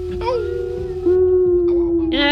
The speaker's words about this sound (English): And kind of as you sit there and pray over this kill, over this battle, you do hear off in the distance these wolf howls as you do this.